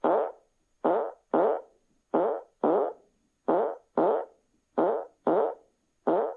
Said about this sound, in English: Alexa, play a surprise fart.